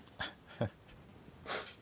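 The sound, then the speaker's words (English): A dog named Boomer snorts and huffs a few times, short breathy bursts spaced unevenly, the last one a longer, noisier sniff. “I think the dog's harassing her.”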